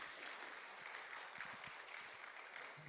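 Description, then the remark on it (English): Steady, dense applause from a church audience for the praise team, many hands clapping in a continuous crackling wash that holds at an even level for about three seconds, with no voices standing out. “Y'all give our praise team a round of applause, please.”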